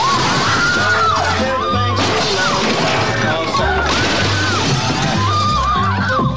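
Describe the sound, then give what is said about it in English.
Loud crashing and smashing impacts, including breaking glass, burst out amid a dense, chaotic din of shrill cries and a low rumbling drone, loud throughout, as police officers bust down a house's front door and SWAT teams crash through the window into the living room. “After giving the order, the officers bust down the front door while the SWAT teams come crashing through the window.”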